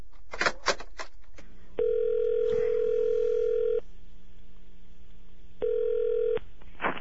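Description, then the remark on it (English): A telephone extension being dialed: a quick run of clicks, then a steady buzzing ring tone that holds for about two seconds, pauses, and sounds again more briefly. No one speaks. “So, you want to call him? Yes. Call him up. All right, pick up the extension.”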